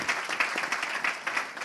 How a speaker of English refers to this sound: can we just please them, just give them a round of applause.